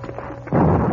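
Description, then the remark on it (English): A low rumble gives way halfway through to a sudden loud crack of thunder from an approaching storm in the foothills, swelling into a heavy, sustained roar, with no voices present. “storm come. Yes, let's hurry to leave these foothills.”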